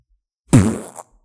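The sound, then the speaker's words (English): A single loud, sputtering fart lasting about half a second, with a buzzy low rumble that trails off; it stands alone in silence with no talking. “Because you got to get the well-timed fart in there.”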